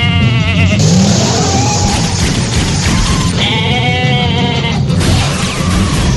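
A goat bleats loudly, two drawn-out wavering cries separated by a short pause, over a steady rumbling background.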